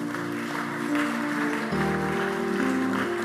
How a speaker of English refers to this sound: The work, oh, you can clap.